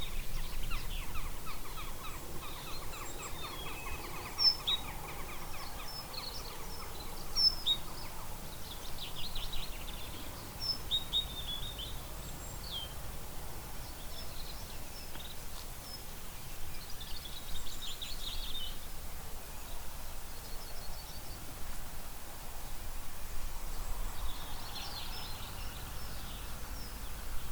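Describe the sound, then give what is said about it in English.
Several birds sing and chirp at once in a garden, a busy overlapping chorus of calls over a low steady background hum, with no talking. “Which birds can you pick out?”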